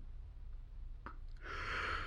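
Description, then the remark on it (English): A single breathy yawn from a man: a short intake of breath, then a long airy exhale that swells and holds to the end. It is fairly soft, with no talking. “And he's yawning again.”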